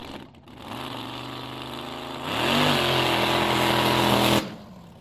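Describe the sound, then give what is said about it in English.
A big new toy car's engine idles with a steady hum, then revs up to a louder, higher whine that holds for a couple of seconds before cutting off abruptly. No one speaks. “You'll be sure to impress the girls with that new toy car.”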